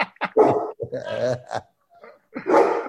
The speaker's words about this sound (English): That sounds like a big, mean dog you got there. A boo-boo. This will eat your leg in half, bite him in half, honestly. I believe it. It sounds vicious.